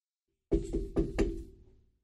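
Four solid knocks on a door in a steady, slightly uneven rhythm, resonant, with a brief woody ring fading after the last rap. No voices.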